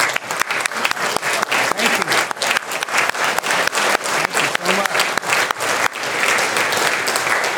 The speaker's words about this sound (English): If you're from Pine Cove and you're serving, could we just honor you if you'll stand? We want to give a round of applause, let you know we appreciate you guys.